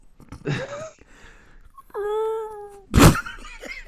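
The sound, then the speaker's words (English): A person imitates dolphin sounds with high, squeaky vocal calls, including a sustained whistling tone with harmonics and a sharp, breathy burst, loud and unaccompanied by speech. “That was how dolphins be. You made that sound, bro?”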